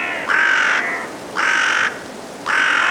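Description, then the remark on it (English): Five carrion crows give three harsh, drawn-out caws, evenly spaced and fairly loud, over a steady rush of wind, heading to roost at dusk in woodland at Woodchester Park, Gloucestershire, England, on a blustery winter evening. “Five carrion crows head to roost at dusk in Woodchester Park in Gloucestershire, England.”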